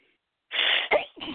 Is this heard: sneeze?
yes